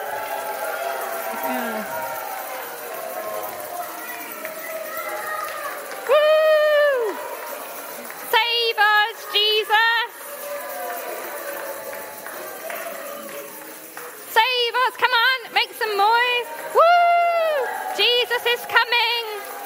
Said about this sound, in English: Thank you for cheering. You may return to your seats for a couple of minutes.